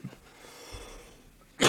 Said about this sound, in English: Oh. I gotta try not to cough in the mic.